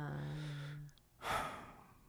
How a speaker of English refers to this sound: And I'm instant yawn. I'm sorry. That's an instant yawn from you to me.